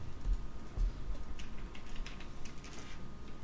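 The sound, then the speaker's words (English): Soft, rapid clicking of keys on a computer keyboard, a steady uneven patter of typing with low background rumble and no voices. “Stop typing.”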